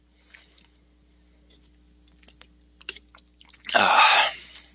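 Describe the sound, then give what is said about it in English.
Quiet wet slurping and mouth clicks of someone sipping water, followed by a short, loud, breathy gasp, with no talking. “This podcast is brought to you by water. Helps clear your throat and keeps you alive.”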